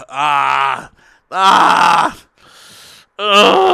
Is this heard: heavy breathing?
yes